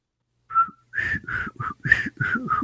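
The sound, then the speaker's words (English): Someone whistles a short, catchy television show theme tune: a series of clear, breathy notes in a bouncy rhythm, with a brief pause after the first note, and no talking. “You don't know how to whistle? I'm not very good at it.”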